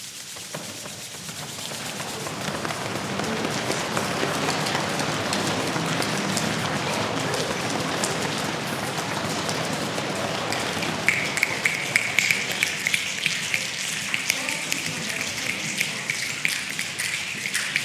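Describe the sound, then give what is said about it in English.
A crowd makes a rainstorm with their hands, a steady rushing hiss of rubbing and patting that swells, then crisp scattered snaps and taps join in like heavier drops. “Now the storm's really coming, and this is the fun part.”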